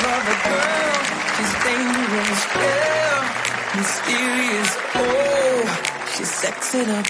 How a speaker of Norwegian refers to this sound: Vil du gå på en klapsalme? Mega gerne. Det er godt. Giv lige en stor klapsalme.